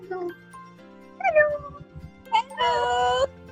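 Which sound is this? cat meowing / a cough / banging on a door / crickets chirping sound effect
cat meowing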